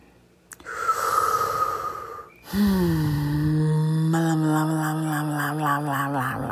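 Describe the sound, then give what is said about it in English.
A long, audible breath drawn in, followed by a sustained voiced exhale that turns into a steady hum, wavering slightly toward the end, as a group breathes together. “We're breathing together, everybody.”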